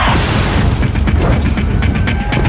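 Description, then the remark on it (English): A woman's head repeatedly bashing against a glass door, heavy thuds and bangs coming in a rough, steady rhythm over a loud, rumbling background noise, with no talking. “Somebody bashing her head against Can you just please drive?”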